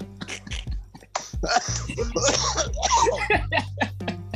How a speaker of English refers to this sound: How's that truth taste? That's why he coughing. He's like, I just spit it out.